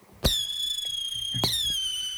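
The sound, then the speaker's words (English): Shrill whistling fireworks keep up a steady high-pitched scream, punctuated by two sharp crackling bursts, one at the start and another a little over a second later, with no voices. “We got whistle in that one. There's a lot of whistle in that one, right?”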